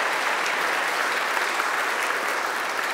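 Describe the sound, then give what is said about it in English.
Steady, moderate, polite applause from a small group thanking the speakers at an event, a dense patter of many hands clapping at an even level for about three seconds without cheers or voices. “Oh, polite applause.”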